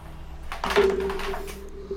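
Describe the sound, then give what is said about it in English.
Dice thrown toward a dice tray clatter and knock against the tray's hard side, missing the tray, in a quick burst of several sharp clicks, moderately loud, with a faint low hum running underneath. “I also just want to appreciate the fact that you threw that to try to go into a dice tray and just hit the side of the tray and missed.”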